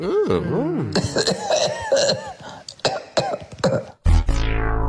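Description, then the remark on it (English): A person coughs several times in a rapid, uneven series, each cough a harsh burst, played for a guess-who-is-coughing quiz on the Hit 105 radio station, following a brief tonal sting and cut off by a loud, ringing electronic hit. “If you correctly identify the person coughing, you win a Hit 105 limited edition”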